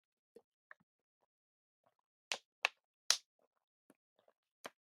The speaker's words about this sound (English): I'm going to take a break there and take a quick little sip of water.